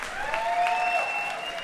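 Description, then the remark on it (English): Scattered applause, a brief steady patter of clapping hands with a thin, faint whistling tone running over it, no voices. “Scattered applause for the pharaohs.”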